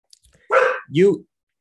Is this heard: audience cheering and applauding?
no